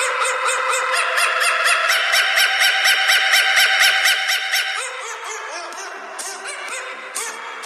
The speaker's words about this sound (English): Okay, so first is the dog version of the coffin dancer meme.